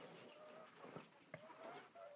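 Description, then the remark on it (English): Chickens cluck faintly outdoors while pecking, with a couple of brief, soft calls rising over a low, steady background and no talking. “Looking at all these chickens out there pecking.”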